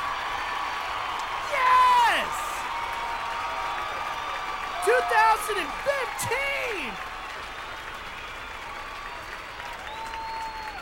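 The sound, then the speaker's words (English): An audience claps and cheers at the news that a band is reuniting in 2015, a sustained, dense wash of applause, with whoops and shouts rising above it around two and five seconds before the noise gradually settles. “You guys could clap again.”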